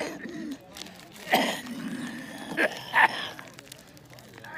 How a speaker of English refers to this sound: That cough, yeah.